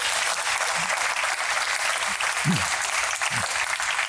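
An audience claps in a dense, steady wash of applause that fills the whole clip at an even loudness, with a few faint voices or cheers rising briefly underneath.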